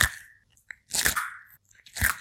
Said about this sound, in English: The answer is a turtle eating broccoli. Let's hear it again.